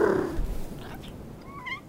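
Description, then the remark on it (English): A cat sitting on a windowsill in a barn purrs low and steady, then gives a brief, thin meow near the end, fairly soft. “There is some sunlight coming through a window, and sitting on the windowsill, without a care in the world, is a cat.”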